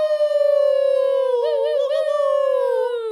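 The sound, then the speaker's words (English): A person lets out one long, loud howl, holding a steady pitch that wobbles briefly in the middle before sliding downward at the end, imitating an animal's howl. “Down you will go while the hillbillies howl.”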